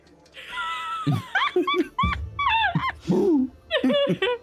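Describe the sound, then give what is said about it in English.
A basset hound barks in a quick string of high-pitched yips, its whiny calls rising and falling between sharper yelps for a few seconds. “Thanks, Nugget. Bark.”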